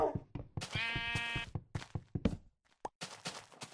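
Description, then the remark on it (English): A pink sheep lets out a single wavering bleat, fairly loud, surrounded by scattered soft thumps and footstep-like knocks with brief pauses of quiet. “Well, this has got to be the pink sheep of Herson around.”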